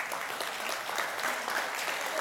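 Steady crowd applause fills the whole stretch, a dense, even patter of many hands clapping at once with no pauses or voices standing out.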